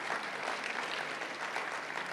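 A church audience claps steadily for all the mothers present, a dense, even wash of many hands sustained throughout with no individual claps standing out and no voices breaking through.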